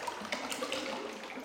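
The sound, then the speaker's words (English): Churning water sloshes and splashes continuously for a moment as a person hits black water after a descent into darkness, with a couple of sharper bursts of turbulence near the start and no voices. “As I hit the water, though, the reality of my situation sinks in.”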